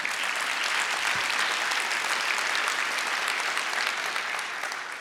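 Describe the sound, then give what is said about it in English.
An audience claps steadily at the announcement of an expected baby girl, a dense and even wash of many hands that keeps up at the same loud level without pause, with no voices standing out. “Don't clap yet.”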